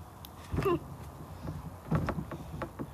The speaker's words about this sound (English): this bed is squeaky. I'll fix it.